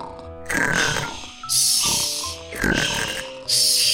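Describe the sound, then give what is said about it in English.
A person makes exaggerated snoring sounds: about four loud, rattling snorts in a steady rhythm, each followed by a breathy, hissing exhale. “And with all of that growing, they became very tired. They went from shushing to snoring.”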